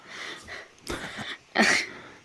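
Two short, harsh coughs, moderately loud, the second a little stronger, separated by about half a second of quiet breathy background. No one speaks.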